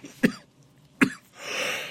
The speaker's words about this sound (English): That coughing fit was totally unrelated. I'm sorry.